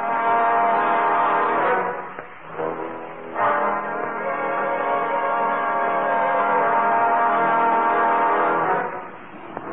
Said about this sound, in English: I tell you, it was a hornet. And I say it was a regular car with a regular horn.